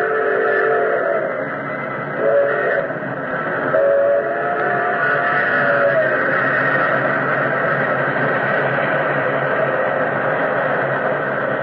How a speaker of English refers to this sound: Like an incredible, fiery-eyed monster, the express engine roared out of the tunnel mouth.